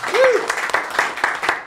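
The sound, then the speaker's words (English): An audience breaks into a round of applause for a band, a dense, steady wash of clapping with a few sharper claps poking through and a short cheer rising and falling near the start. “Let's hear a round of applause for them.”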